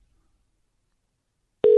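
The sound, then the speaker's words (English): After near silence, a loud, steady telephone ring tone on a call made by dialing zero starts abruptly near the end and is cut off almost immediately. No one speaks. “Well, you dial zero, it rings, but I don't know what's going to happen here.”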